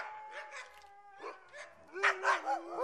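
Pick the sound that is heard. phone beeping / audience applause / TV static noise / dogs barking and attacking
dogs barking and attacking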